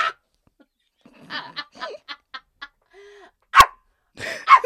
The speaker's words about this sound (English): Barking.